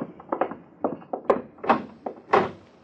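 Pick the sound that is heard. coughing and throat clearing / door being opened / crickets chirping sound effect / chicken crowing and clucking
door being opened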